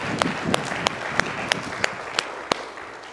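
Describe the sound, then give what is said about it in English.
An audience claps in unison to give praise to God, sharp steady beats about three per second over a soft wash of scattered applause and crowd noise, with no voices standing out. “Give Him a hand clap if you wouldn't mind.”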